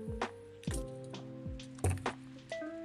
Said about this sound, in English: Excuse me while I drink a little water.